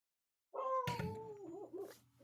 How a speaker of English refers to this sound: Whose dog is that? That's mine. Shut the dog up.